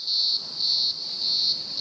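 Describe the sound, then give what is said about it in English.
Cicadas whir in a loud, shrill, continuous drone that swells in three long pulses with brief dips between, alone with no voices. “I love the sound of cicadas cricking and whirring and singing.”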